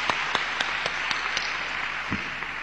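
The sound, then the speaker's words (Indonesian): An audience applauds steadily to welcome a visiting pastor from Romania, a dense wash of many hands clapping at once with a few louder individual claps standing out at a regular beat, no talking. “Mari beri tepuk tangan.”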